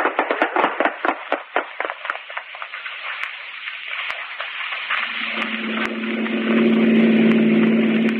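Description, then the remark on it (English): A car engine runs, its rapid chugging pulses slowing and smoothing out before settling into a steady, louder low drone as the car drives on, the driver slowing down to avoid speeding. No one speaks. “Well, I'm going to slow down then. No use getting picked up for speeding.”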